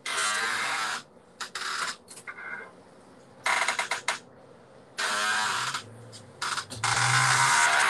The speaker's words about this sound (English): You sound like you're in a rocking chair. Yeah, it's just this thing is just weird over here.